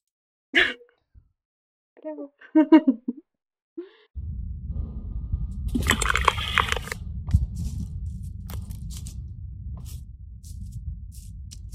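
A few short vocal sounds, then a steady low rumble of outdoor water or wind before a single bright splash as a rock thrown by a girl hits creek water, with the rushing noise continuing afterward.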